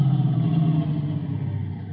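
A car engine idles with a steady low rumble and slight fluctuations, as if the vehicle is rolling to a stop. No voices are heard.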